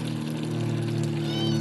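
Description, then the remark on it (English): A cat meows briefly against a steady, loud low drone of an aeroplane passing overhead that hums through the whole moment, with some faint rushing noise of a water butt being emptied in the background. “Got an aeroplane going above, a water butt being emptied, and a meowing cat.”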